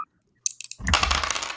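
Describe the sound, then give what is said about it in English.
A few sharp clicks of dice hitting a hard surface, then a sustained rattling clatter as they tumble and roll across a table, fairly loud with no voices. “The dice tell me there are 8.”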